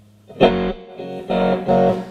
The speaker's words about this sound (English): And then, of course, you got your master volume, which allows you to take the amp down to